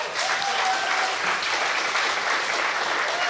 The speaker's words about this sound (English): I want to commend to you our church staff. You may not know this. Yeah, you give them a clap.